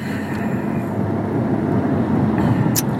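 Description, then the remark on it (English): Steady low road rumble from inside a car driving in traffic, a constant engine and tire drone with no voices, plus a brief faint click near the end. “Just paying attention to traffic as usual.”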